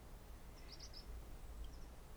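A small bird chirps faintly, a quick cluster of high notes followed by a couple more, over a low, steady outdoor rumble.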